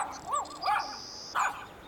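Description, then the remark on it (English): A dog barks three times in quick, irregular succession, short sharp yips with a slightly high, strained tone, heard fairly clearly with no one talking. “See? That's him now. I know it. Buster has a very distinct bark.”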